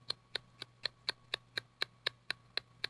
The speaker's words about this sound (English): And the clock was ticking.